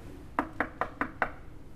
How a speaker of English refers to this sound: And then... Knock, knock.